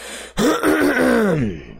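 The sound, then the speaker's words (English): A single voiced throat clearing by a person with a sore throat breaks the quiet abruptly, a rough rasp sliding into a drawn-out, gravelly hum that fades after about a second, with no talking around it. “Probably going to be clearing my throat quite a bit, which is going to be terrible.”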